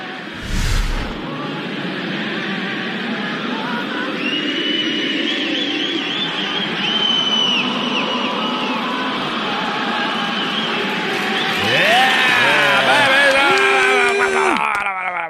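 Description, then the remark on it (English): A large, mostly Canadian crowd at an NHL game sings the U.S. national anthem together after the singer's mic cuts out. A dense wash of many voices holds sustained notes, swelling louder near the end with cheers and whistles rising over the singing. “Thankfully, the mostly Canadian crowd took it from there and sang the rest of the song.”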